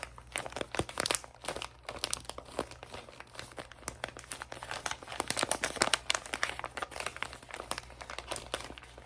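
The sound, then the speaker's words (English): Continuous crinkling of wrapping paper on a present being opened, with dense crackly bursts and irregular rustling that swells and eases over several seconds, no voices present. “ASMR Elf Opens Your Presents (Crinkles) (Tapping)”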